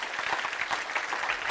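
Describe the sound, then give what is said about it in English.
An audience claps their hands together, a steady, dense burst of many overlapping claps at moderate volume with no voices standing out. “Somebody clap your hands if you know what I'm talking about.”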